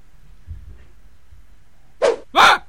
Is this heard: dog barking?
yes